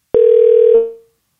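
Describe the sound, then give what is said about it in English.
A click, then a single steady electronic telephone tone holds for about half a second before fading out as a phone call is placed, fairly loud, with no voices. “calling you to see what you've been watching.”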